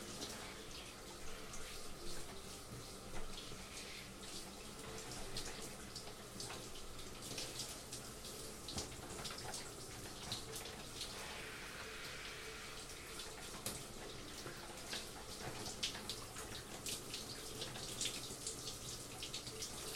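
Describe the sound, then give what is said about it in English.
Steady shower water from a cold shower someone is taking to cool down runs without pause, a dense hiss of spray hitting a surface with scattered splashes and drips, holding an even loudness throughout with no voices. “Right now I'm just taking a cold shower to cool down.”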